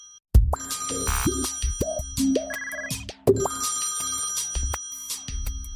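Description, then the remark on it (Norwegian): A telephone rings with a call from the boss, a loud electronic ringtone of rising and falling tones, layered with busy beeps and chirps, with no voices. “Sjefen ringer, den må jeg ta.”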